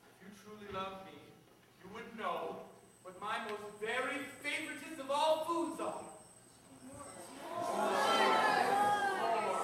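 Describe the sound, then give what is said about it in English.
A voice talks for several seconds, then gives way to a hushed, breathy wash of a show's audience whispering the right answer, Georgia O'Keeffe, to a character. The whispering is steady and unvoiced, lasting to the end. “And then the Father Time tells him to listen to the voices echoing through the time stream, and it's the audience. They're whispering the right answer to him.”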